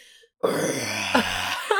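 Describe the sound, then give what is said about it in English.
A person imitates the growl of a big, happy bear with a single sustained, low, rumbling voice, rough and gravelly, lasting over a second after a brief pause, with a couple of slight surges near the end. “He growled like a bear, a big, happy bear.”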